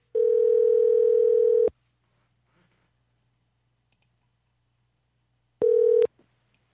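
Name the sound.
telephone dial tone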